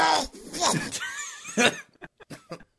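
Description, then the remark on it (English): A loud, sharp sneeze played from a soundboard bursts out amid voiced, laugh-like sounds, followed by a few short, clipped puffs of noise trailing off at the end. “Okay, for the next episode, I'm cutting the sneeze out. I'm bringing in. I'm playing it on the soundboard.”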